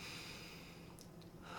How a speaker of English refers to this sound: Deep breath, …, you're not breathing.